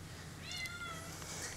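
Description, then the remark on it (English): A kitten lets out a single thin, high-pitched meow that rises and trails off as she tries to climb up bedsheets, fairly quiet against a low steady background hum, with no one talking. “And the kitten. The kitten loves you, too. The kitten agrees.”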